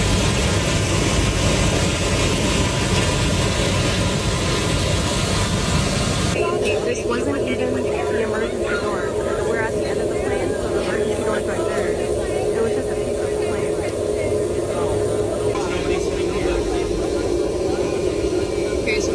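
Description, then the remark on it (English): A loud, steady roar of airplane cabin noise in flight, with muffled voices murmuring underneath; partway through, the rumble briefly shifts in tone before settling into the same constant drone. “And this is eyewitness footage from inside the plane.”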